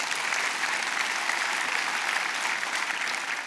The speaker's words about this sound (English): Yeah, we can clap for him, absolutely.